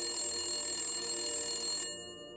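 A telephone bell rings steadily for almost two seconds, a bright continuous jangle, then cuts off abruptly, leaving a quieter lingering hum. No one speaks.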